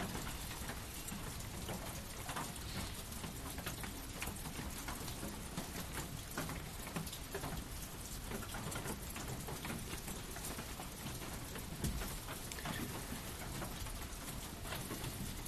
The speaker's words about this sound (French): On savait pas là qu'il allait pleuvoir.